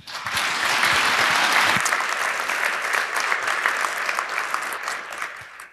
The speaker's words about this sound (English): So please give a round of applause to Mr. Sylvain Mounon.